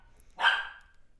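puppy barking

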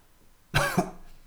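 cough

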